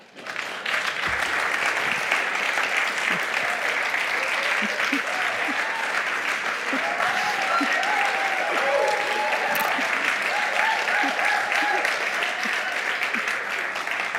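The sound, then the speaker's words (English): A standing audience claps steadily and loudly for the whole stretch, a dense wash of many hands with scattered cheers and voices rising through it. “All right, you may not want to be standing or clapping after you hear the homework.”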